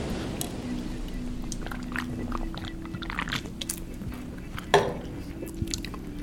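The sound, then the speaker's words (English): Wet mouth sounds of someone gulping down fresh water: a run of soft slurps and swallows with faint liquid drips, and one sharper gulp near the end, over a low steady hum. “I'll just keep drinking some of that water.”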